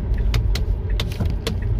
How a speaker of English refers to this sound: Sound like gunfire hitting the car. Bang, bang, bang, bang, bang.